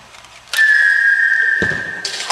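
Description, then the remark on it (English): A loud arrow whistle sound effect: a sharp whoosh opens into a steady, high whistling tone that holds for nearly two seconds, with a dull thud midway and a hissy burst near the end. “Type in arrow whistle.”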